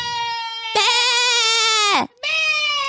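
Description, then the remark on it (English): A man's voice imitates a goat, letting out loud, wavering bleats: one long quavering bleat followed by a short break and another, strong, with no other talk. “My dad is making goat noises.”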